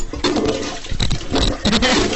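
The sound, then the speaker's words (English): A toilet flushes, a steady rushing and gurgling of water that holds at a fairly loud level for a couple of seconds. “It's flushing properly!”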